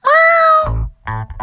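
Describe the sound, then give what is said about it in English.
A cat lets out a loud, close, drawn-out meow, then follows with a few lower, rougher cries in quick succession, with no talking. “How can we expect to follow the trail of pee if our piss hound is a cat?”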